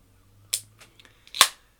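A beer can or bottle is opened: a sharp metallic snap, a few small clicks, then a louder crack with a short fizzy hiss, heard alone with no talking.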